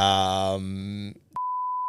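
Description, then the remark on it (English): A voice speaks with a drawn-out tone, then after a brief gap a loud, steady censor bleep cuts in to block out a player's name and holds as one unbroken high-pitched beep until the end. “Can you give us a name of someone who's blocked you, a player, and we'll beep it out just because I want to know?”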